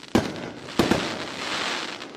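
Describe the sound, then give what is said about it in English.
Sharp crackling bursts of a firework pop in quick succession, with a dense sizzling rattle trailing underneath, loud with no voices. The crackle comes from granules of metal and metal oxide burning and banging quickly in small amounts. “The crackle you sometimes hear at the end is also deliberate.”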